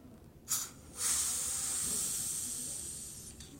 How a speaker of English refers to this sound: so when you're opening champagne, that actually sort of ease the cork up. Mm-hmm. So you know what it's supposed to sound like. I hope I don't mess it up now. Or what it normally sounds like. Here's what it's supposed to sound like.